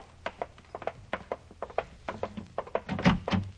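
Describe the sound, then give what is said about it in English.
A house's front door being opened, heard as a run of clicks, rattles and light knocks from the latch and handle, then a heavier thump as it swings. No one speaks. “Now, listen, you got to answer that front door.”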